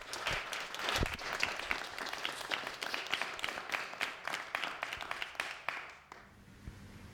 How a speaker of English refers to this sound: So give yourself a little round of applause. Like, appreciate it.